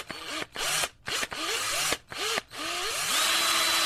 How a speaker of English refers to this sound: Yep, it's a drill. An electric drill. Hey, guess what I was drilling? Okay, I'll tell you. I'll tell you what I was drilling. A screw in to make a fishing rod holder.